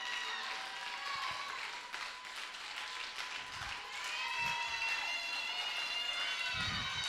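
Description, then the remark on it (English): An audience claps in a dense, continuous wash that holds steady for several seconds, with indistinct cheering voices mixed into the applause. “Come on, Facebook, clap.”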